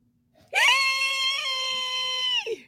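A single loud, sustained human scream lasting about two seconds, high and strained with a steady pitch, ending abruptly with a short trailing cry.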